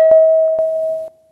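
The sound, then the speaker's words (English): A single gong-like time signal tone marking 10 seconds past 2 a.m. rings out loud and steady at one pitch, sustaining for about a second before cutting off abruptly, with a few soft clicks along the way. “When you hear the gong sound, the time will be 10 seconds past 2 a.m. precisely.”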